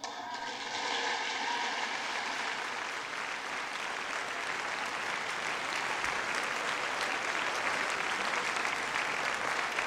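Sustained applause from a large crowd at a speech, in tribute to President Ronald Reagan, a dense, steady wash of clapping that swells quickly at the start and continues loudly throughout without any talking.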